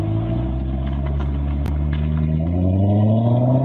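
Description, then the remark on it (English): An automatic car's engine revs up steadily as a woman drives it, its deep harmonic drone climbing in pitch over a few seconds, loud with a low rumble underneath and no voices. “So he already said, okay, she revving it up. It's not manual. Okay, it's automatic.”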